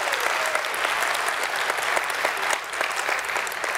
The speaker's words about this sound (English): So can you give them a round of applause? Welcome them. Good to have you with us.